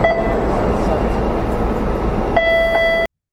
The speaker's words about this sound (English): It's the sound of the maybe you wouldn't because you didn't live in the urban areas, but the sound of an MBTA. Boston subway chime.